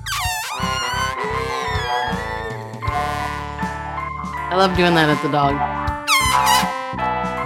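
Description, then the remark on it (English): Air squeals loudly out of a balloon's stretched neck in long wavering bursts, its pitch sliding up and down. A person speaks briefly over the noise. “Who let the air out of my balloon?”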